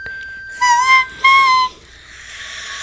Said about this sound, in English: Wait, what's the note that she sings? I don't know. Hold on, should I try to do a whistle note?